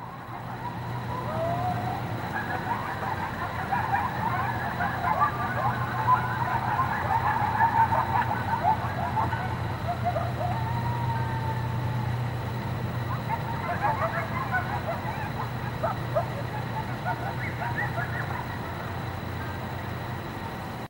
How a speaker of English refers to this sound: The uploader claims the sound in the following clip is just that. A pack of coyotes.